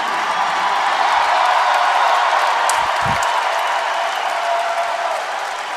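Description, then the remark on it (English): A crowd on its feet cheers and applauds loudly and steadily, a dense roar of clapping and shouting that holds its level throughout, with a few brief low thumps in the middle. The Illinois Illini have just won the match 3-1 to reach the Final Four. “Crowd on its feet.”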